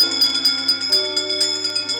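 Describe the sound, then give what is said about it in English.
A bell rings in a quick, steady series of strikes, about four per second, its bright tone sustaining between hits over a low background hum, with no one speaking. “Wizards and witches, wherever you dwell, give us a hint by ringing a bell.”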